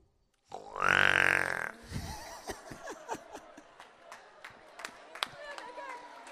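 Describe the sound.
A person imitates a pig with one loud, drawn-out squealing grunt lasting about a second, followed by scattered sharp clicks and softer vocal sounds.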